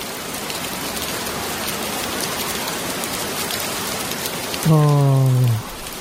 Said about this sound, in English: Oh. I may as well have opened the window here in the studio. That's essentially what's going on. Rain. Thunderstorm warnings.